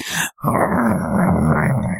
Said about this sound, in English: He's displaying very aggressive behavior. Is he normally like this? I don't know. Dogs are weird.